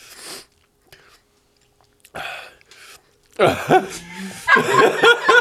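A few short, crunchy chewing bursts with pauses between them, followed by a burst of laughter and chuckling as the eating continues.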